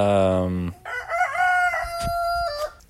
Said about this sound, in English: Gosh, man, these chickens.